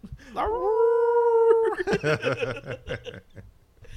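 A single long, steady wolf howl rises and holds for over a second, then breaks into a run of short, choppy yelping or laughing bursts from wolves that fade out.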